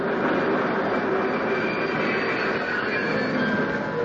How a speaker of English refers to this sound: The train's coming.